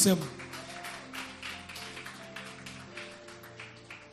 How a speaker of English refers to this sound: Hallelujah. Amen. Clap unto the Lord.